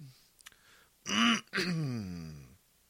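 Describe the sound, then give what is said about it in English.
A loud throat clearing: a harsh rasping burst followed by a longer, groaning clear that trails off, with no talking around it. “I don't remember what you told me about my cough.”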